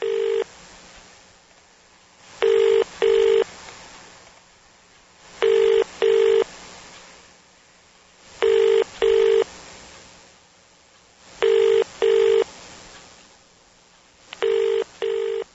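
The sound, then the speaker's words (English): A telephone ringback tone heard over the line while calling a hotel that is not answering, five double rings spaced about three seconds apart, steady and fairly loud against a faint hiss, with no one speaking. “You know, Anna's not picking up the phone, DME.”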